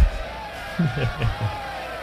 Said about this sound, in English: It's a cheering crowd at a sporting event. From freesounds.org.